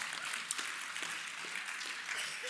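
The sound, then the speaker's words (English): A church crowd claps steadily for the Lord in a dense, continuous patter of many hands, fairly soft and even throughout, with no voices standing out. “Give the Lord a round of applause for that.”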